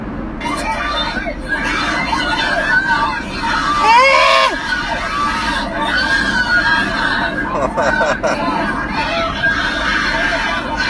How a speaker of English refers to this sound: Oh my god, I hate it so much. I don't think there's a sound I hate more in the world than bros fighting and bros chicks like shrieking.